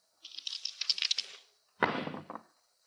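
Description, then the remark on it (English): Dice rattle in a quick clicking flurry for about a second, then after a short pause they clatter and tumble across a hard surface in a louder burst of small knocks. “All right. Roll the dice.”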